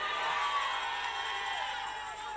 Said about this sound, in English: Who am I ministering to here right now? Let me hear you shout the biggest hallelujah.